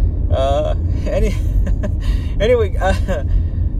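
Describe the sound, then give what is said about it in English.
Steady low rumble of a car cabin while driving home, droning evenly throughout, with a person speaking over the road noise. “I'm recording one in the car as I drive home.”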